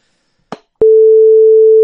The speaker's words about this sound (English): I hope you use the audacity beep on that one, please.